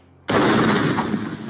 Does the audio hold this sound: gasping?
no